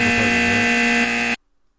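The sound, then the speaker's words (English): A loud, harsh electronic buzzer blares steadily for just over a second, then cuts off abruptly into silence. “Never did turn that buzzer down, did you”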